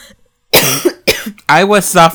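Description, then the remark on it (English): A few loud coughs in quick succession, each a harsh burst with a rough, voiced tail, the last one longer and more drawn out. “Apologies for the many coughs you will probably hear.”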